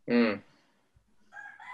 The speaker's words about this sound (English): Those are the Kauai chickens in the background.